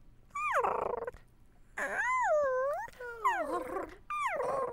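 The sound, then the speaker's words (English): A voice imitates a small creature, like a puppy or a baby, snuggling in contentedly: four soft, sing-song whimpering coos that swoop up and down, with short pauses between them. “So, like, if the little creature is snuggling in, maybe it's a...”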